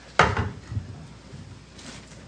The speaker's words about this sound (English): So then after they'd said that, he pulled out a bunch of smaller rocks, and he started pouring them into the jar. Now, what I need you to do here as I pour these in is just shake them down, okay? Boy, we can get a lot more rocks in here.